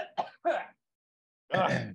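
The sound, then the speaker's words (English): A person who feels a popcorn kernel caught in their throat gives a few short, harsh coughs and throat-clearing bursts, fairly loud, then a pause before one longer rasping clear of the throat. “Yeah, I got to do some coughing. Hang on.”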